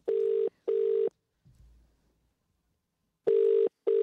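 A telephone ringback tone purrs in a double-ring pattern as a woman phones her father for career advice: two short bursts, a pause, then another pair. It is loud and steady with a soft low thump in the gap and no voices.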